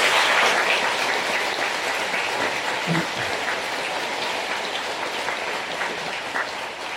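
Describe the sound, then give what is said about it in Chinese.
Steady applause from an audience at a church, congratulating a performance, fills the whole stretch, a dense crackle of many hands clapping at once that holds fairly even and fades only slightly toward the end. “再次让我们掌声祝贺他们的演出和奉献。”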